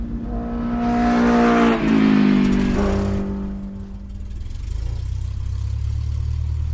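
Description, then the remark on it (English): The gas engine of an 1886 Benz patent motor car revs loudly with rising and falling pitch for a few seconds, then settles into a lower rumble as the car pulls away, with no talking. “buckle up as we ride into 1886 with patent number 37435, registered by Carl Benz for his vehicle powered by a gas engine”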